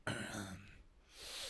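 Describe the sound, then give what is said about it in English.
A single raspy throat clearing bursts out at once, breathy and rough, then fades into a soft exhale of breath. No one speaks. “Sorry, I was clearing my throat.”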